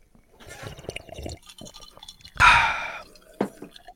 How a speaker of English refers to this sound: Nice. You just had to upstage me with your ice water there.